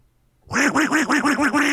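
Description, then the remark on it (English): A person imitates a duck with a rapid run of about six nasal quacks in quick rhythm, loud, after a brief silence. “You point at me and I'll sound like a duck.”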